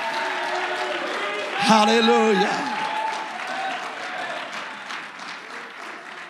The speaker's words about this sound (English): Oh, if you've been baptized in Jesus' name, immersed in the water, and you're thankful for it, would you shout unto God and clap your hands unto Jesus?